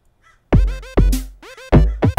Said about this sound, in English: And there goes your crow. Look at that guy.